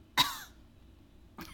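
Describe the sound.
A voice imitates a throat clearing: one sharp, raspy burst, followed after a pause by a shorter, quieter rasp starting at the end.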